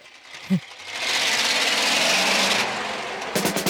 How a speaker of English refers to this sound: Starts a good sample of a garbage truck.